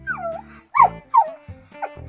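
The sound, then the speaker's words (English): A pet dog whines in high, falling cries, broken by a few sharp yipping barks in quick succession, fairly loud with no one talking. “They're so good at knowing when exactly is the perfect moment, or exactly what pitch they have to whine or bark to get you to pay attention.”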